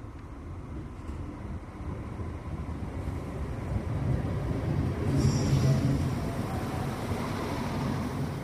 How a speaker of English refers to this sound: So we're just waiting on the train to come. You could probably hear the beep beep, the horn. Here it comes now.